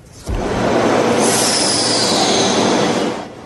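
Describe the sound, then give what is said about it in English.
A subway train at a station in Rome roars past for about three seconds, with a loud steady rumble and a high metallic wheel squeal rising partway through. No voices. “A woman dragged down the platform and onto the tracks after her shopping bag got caught in the train door.”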